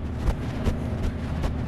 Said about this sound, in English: Well, it is really windy here today, guys. And a little bit cold.